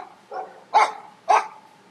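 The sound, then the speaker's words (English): A dog barks twice in quick succession, two sharp, fairly loud woofs about half a second apart, preceded by a softer, lower yip or grumble, with no talking. “your dog is barking.”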